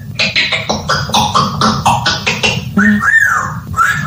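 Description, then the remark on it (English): A South African red-tailed parrot's raspy, voice-like chatter counts from one to five in a quick run of syllables in steady rhythm, loud, ending with a brief rising whistly tone. “A South African red-tailed parrot who can curse and swear and can navvy and can whistle and can sing. And here he is counting.”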